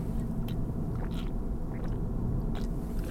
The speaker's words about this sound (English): Hold on a second, take a drink here.